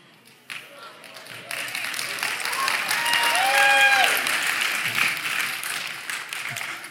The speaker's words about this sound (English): Now, did you hear how they clapped and everything?